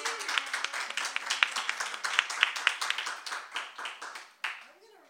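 An audience breaks into a round of applause for two speakers being introduced, dense overlapping claps at a steady, moderately loud level that thin out and fade over about five seconds.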